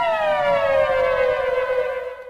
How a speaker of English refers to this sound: Whoa, what's that? Whoa, sirens. Oh. Whoa, what is that?